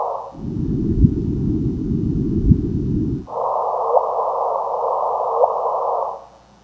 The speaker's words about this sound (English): and then it's going to frequency shift it up by 400 hertz to kind of put it where you can hear it a little better, and you'll really be able to hear the chirp. So let's see if we can hear those black holes merging. Let's go. Hear that chirp?